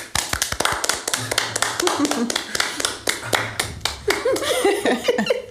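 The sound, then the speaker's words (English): A steady round of applause, dense rapid claps filling the space from start to finish, with voices faintly chattering and a bit of laughter underneath toward the end. “Yourself an round of applause, lovers.”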